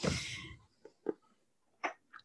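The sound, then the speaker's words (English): A dog gnawing on a bone: a loud, rough scrape at the start, then four short, crisp crunches spaced irregularly through the quiet, with no voices. “Could you not chew that while I'm recording?”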